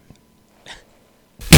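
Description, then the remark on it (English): A fart sound effect from a soundboard button suddenly blasts out, very loud and harsh with a low buzzing rumble, coming after a faint click and a brief breathy noise. No one speaks. “Right beyond the fart button.”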